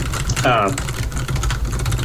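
Rapid, irregular clicking of keys on a computer keyboard, steady, as someone types in a radio chat, over a low background rumble, with a brief tonal vocal sound early on.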